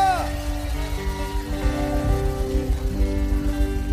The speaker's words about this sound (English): Come on, let's give God a round of applause right now. Hallelujah. Hallelujah.